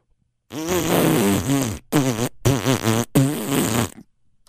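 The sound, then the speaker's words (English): A loud Bronx cheer sound effect played at the press of a button: one long, buzzy raspberry with a wobbling pitch, followed by three shorter blats in quick succession, with no talking. “In New York, it's womp, womp, womp, womp, womp, or actually the Bronx cheer.”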